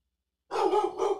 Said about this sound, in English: Baylor's going to start barking right whenever we start the fucking recording